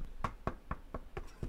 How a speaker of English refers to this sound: Someone knocks on the door.